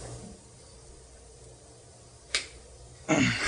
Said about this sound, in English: Coin has been flipped. It's heads. Obama won.